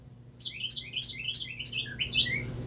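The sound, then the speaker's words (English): A bird chirps in a quick series of bright, descending tweets, repeated about ten times over a low background hum, fairly clear. “Wow, where is that bird? You hear the bird?”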